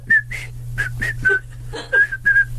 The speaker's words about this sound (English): It's a sort of a marching tune, I remember. A bit of whistling.